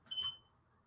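A single short electronic beep, high and pure-toned, signaling to move on, sounds once and quickly fades, leaving a faint low background hum with no voices.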